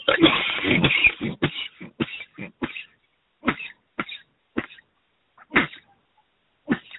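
A hard coughing fit: a dense, raspy burst of coughs at the start, then a string of sharp, separate coughs spaced irregularly with short silent gaps, fairly loud throughout.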